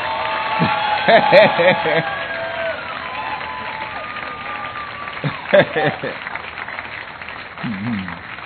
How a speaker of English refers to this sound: So the way you are clapping shows you don't really appreciate it.